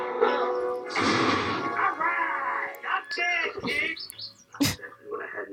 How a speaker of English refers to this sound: I like how Pegasus makes bird noises too. Yeah, he makes like bird noises and horse noises. He like tweets.